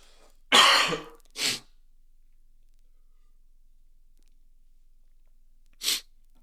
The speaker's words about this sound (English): Pause for another cough and a drink of my water real quickly.